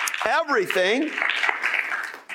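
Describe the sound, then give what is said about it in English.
An audience claps their hands unto the Lord in a steady wash of hand clapping tonight, briefly topped at the start by a loud, rising and falling voice calling out over the crowd. “Somebody clap your hands unto the Lord tonight.”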